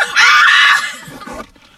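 A woman's loud, high-pitched scream-singing of song lyrics bursts out for under a second, then trails off into a softer, lower vocal tail before fading.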